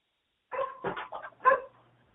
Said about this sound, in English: Well, that is just like, that is Kimora. Oh. My golden doodle puppy that won't shut up.